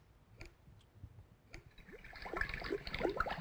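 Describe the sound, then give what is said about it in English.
Water boiling in a cooking pot for noodles, bubbling and popping, starting with sparse pops and building into a louder, denser burble over a few seconds. No one speaks. “That's boiling.”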